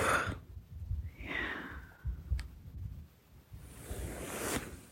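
A steady rushing gust of wind blows for several seconds, broad and airy with surging swells, rising and falling like breath, with no voices present.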